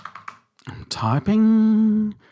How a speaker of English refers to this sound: I'm typing 1979.